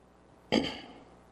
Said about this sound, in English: Excuse me, my throat, I'm going to be clearing my throat some. I've been fighting this crud this week that's going around, so I'll be real careful at the door this morning not to bless you with it.